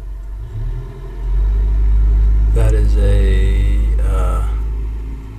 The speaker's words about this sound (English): post office truck.